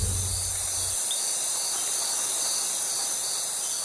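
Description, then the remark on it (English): Crickets chirp steadily through a quiet night, a continuous high-pitched trill that stays even and unbroken, with a brief low rumble at the very start and no voices. “And then they all settle down for the evening and fall fast asleep to the chirping of little crickets.”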